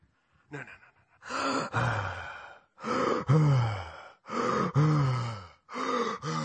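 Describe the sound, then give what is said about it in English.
A person imitates a deer panting: a short breathy lead-in, then four loud, heavy, voiced gasping breaths repeated in a steady rhythm about a second and a half apart. “And sometimes we think about deer, you know, we think, oh, that's a beautiful picture of a deer. Panting.”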